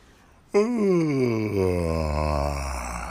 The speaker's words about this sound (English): Yeah, you know what that is? Yeah, it's a yawn, but what it is to the rambling Viking? A mini war cry.